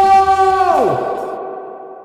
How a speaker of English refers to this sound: Man, I missed having that echo. Having that effect.